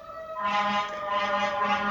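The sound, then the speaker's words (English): Fire trucks passing outside blare a steady, buzzing horn tone with rich harmonics, joined halfway through by a loud rush of engine and road noise. No one speaks. “Good timing with the fire trucks as usual.”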